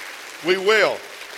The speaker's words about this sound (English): Clap your hands right now and say, that's good, Pastor.